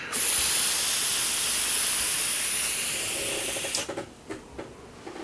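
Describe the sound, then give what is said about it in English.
A steady, bright hiss from a vape device with Ronin Emperor's Crunch e-juice during a draw holds for nearly four seconds, with a thin high whine on top, then cuts off into a few soft clicks and puffs. “Nice, really nice vape, just really nice flavor.”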